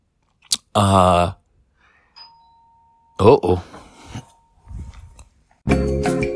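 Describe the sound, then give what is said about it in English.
A doorbell rings as someone comes to the door to deliver an adapter, its electronic tone holding steady for a few seconds, surrounded by loud bursts of voice and some clattering noise before and after. “That was someone at the door who gave me an adapter to plug into my outlets”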